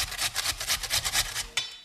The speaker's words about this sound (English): I weighed the radish just now. It's about 650 grams. Yeah, so you just grate this radish.